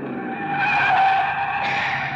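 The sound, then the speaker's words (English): Tires squeal loudly and continuously as a car accelerates hard, taking off in pursuit up a twisting, steep mountain road; the shrill skid rises and holds for a couple of seconds over a rough engine roar, intense. “We piled into the car and took off after Chase up a twisting, steep mountain road.”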